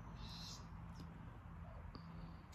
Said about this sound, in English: Oh, that's is that a hummingbird? No, I think that's a chickadee or a freaking finch type bird. Hummingbirds don't sound that annoying.